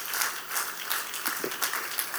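audience clapping hands

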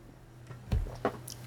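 sipping whiskey

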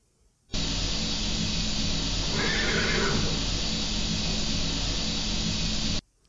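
horse neighing

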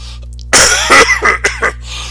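deep coughing

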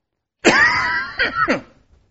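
coughing and throat clearing

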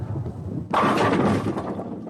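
bowling strike

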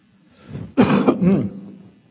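cough and throat clearing

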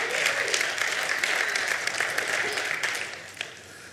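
audience clapping

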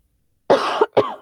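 cough

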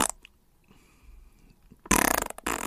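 fart sound effect

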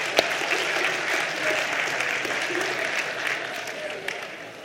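group round of applause

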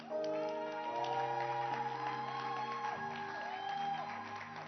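audience hand clapping

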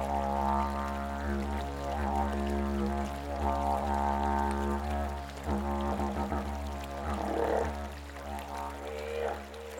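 running water

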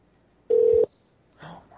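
telephone keypad dialing tones

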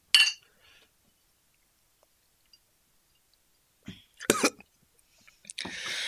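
glasses clinking

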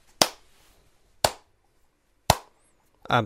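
slow clap

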